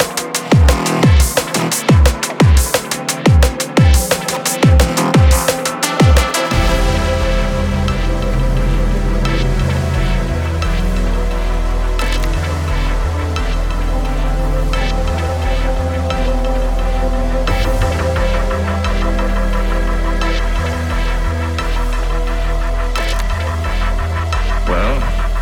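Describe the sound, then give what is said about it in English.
A loud techno track with a driving, repetitive kick drum and deep throbbing bass, opening with a few seconds of sharp rhythmic hits before settling into a steady pulsing groove; no voices. “It's like a cheeky techie, this one, a cheeky fucking techie.”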